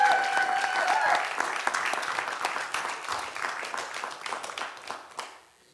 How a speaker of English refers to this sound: Give her an expression of appreciation. I don't care if you clap, say amen, whatever.